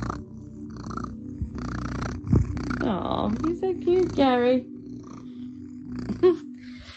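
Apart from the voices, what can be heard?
cat purring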